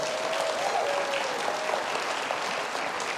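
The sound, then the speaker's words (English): A studio audience claps steadily for a few seconds, a dense, even wash of many hands applauding, with a faint whistle-like tone threading through near the start. “Now, they weren't clapping that Keith has the flu.”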